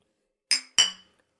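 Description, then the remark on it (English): Two quick, bright glass clinks in succession as glasses are touched together in a toast to Beethoven's Fifth Symphony, each ringing briefly before fading, with no voices present. “Cheers to Beethoven's Fifth Symphony.”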